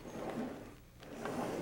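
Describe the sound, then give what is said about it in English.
A drawer is slid open to find keys, with a soft wooden scrape, a brief pause, then another rumble with faint rattling of contents inside, fairly quiet. “I think they're in this drawer. Here they are. Here are the keys.”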